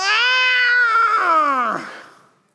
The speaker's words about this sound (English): So he does the only thing that he can do. You know, let the lion roar. He wells up. He's got the, and he's getting ready. He's going to let out.